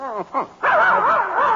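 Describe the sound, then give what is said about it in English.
A puppy lets out a few quick yips, then breaks into a long, wavering, high-pitched whine that rises and falls without pause. “It's Tiger. It's our dog.”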